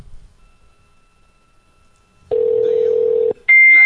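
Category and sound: signal or alarm, telephone keypad dialing tones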